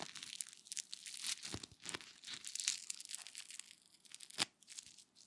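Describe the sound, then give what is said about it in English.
Fingers rub and scrape across crunchy toast, making a steady dry crackling and crinkling with scattered sharper crunches and one louder snap near the end. No voices. “I like my toast super crunchy, but I know some people like it really soft and smothered in butter.”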